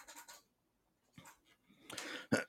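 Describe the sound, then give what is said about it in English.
Someone clears their throat right up against a microphone: a few short, rough, breathy rasps spread across a couple of seconds, the last burst the loudest, with no talking. “Why did I just clear my throat into the fucking microphone like an idiot?”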